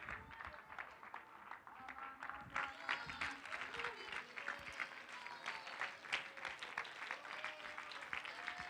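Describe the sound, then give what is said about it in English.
A church audience stands and claps hands to the Lord in a dense, sustained burst of applause, with scattered voices and cheers mixed in throughout. “Stand up and clap your hands to the Lord right now.”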